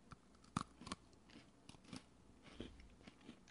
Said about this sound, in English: It's got a nice balance. In this cookie. Let's check the bite.